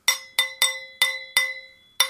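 A cheese knife taps a wine glass six times in an uneven, tune-like rhythm. Each strike is a bright clink that rings and fades, with no voices.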